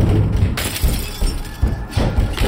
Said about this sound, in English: My music box fell off the dresser and smashed. A lamp followed a moment later.